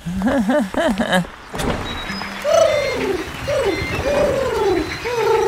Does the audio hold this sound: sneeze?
no